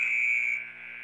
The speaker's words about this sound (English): clock has hit zero. I wish we could get a different kind of buzzer. That thing just makes the hair on the back of my neck stand up. That's probably from 1904 when they started using that kind of buzzer.